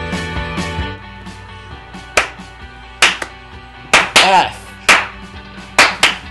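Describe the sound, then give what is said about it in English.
Sharp hand claps from people clapping along to a song land roughly once a second, a handful in a loose steady beat, over a sustained droning musical tone that fades after the opening moment. “Anyway, we were clapping along.”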